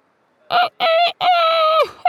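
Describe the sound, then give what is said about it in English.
A voice imitates a rooster's crow as a cockerel's laugh: a loud cock-a-doodle-doo in three bursts, two short notes and then a long, drawn-out call that drops off at the end. “Gus giggled, mostly at the cockerel's funny cock-a-doodle-doodling laugh rather than his joke.”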